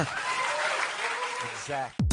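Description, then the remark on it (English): A round of applause from a group for Superman, dense steady clapping for about two seconds before it cuts off and a voice begins speaking. “Let's get a round of applause for Superman.”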